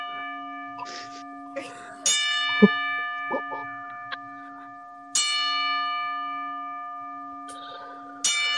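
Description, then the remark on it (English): A bell tolls loudly three times at a slow, even pace as a ten-bell salute, each strike ringing out in a long, shimmering decay, with faint voices and small clatters in between. “Who are we 10 bells saluting?”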